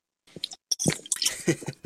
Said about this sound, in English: Why he drink the water so damn loud?